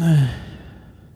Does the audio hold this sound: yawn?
yes